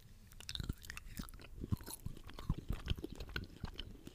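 Chewing of chocolate right at the microphone, with irregular moist crunches and mouth sounds repeating steadily, with no talking.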